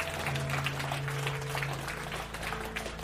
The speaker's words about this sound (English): Let's give God a hand clap for that. That's great news today.